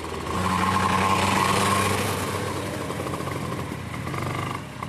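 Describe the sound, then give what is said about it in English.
Several small Minimax-class kart engines start up and run together for testing at the track, a steady buzzing idle with a droning whine that holds and wavers slightly, loud throughout with no talking. “Start them up! Start your engines!”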